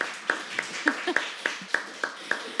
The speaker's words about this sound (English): And so would y'all give him a round of applause for joining us?